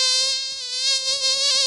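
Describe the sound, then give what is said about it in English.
A mosquito whines steadily, a thin high-pitched buzz that wavers slightly in loudness as it hovers, with no voices. “Mosquitoes can be a real nuisance.”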